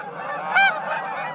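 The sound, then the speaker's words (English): Migrating Canada geese, returning from nesting in Canada and Alaska, honking, with one loud, clear honk midway through over a steady chorus of fainter goose calls from a flock passing overhead. “The migrating Canada geese heard here are returning from nesting in Canada and Alaska.”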